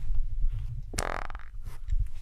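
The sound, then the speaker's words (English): A single fart erupts with a sharp onset and trails into a buzzy, sputtering tone for about half a second, heard over a low background rumble with no talking. “I got to fart you.”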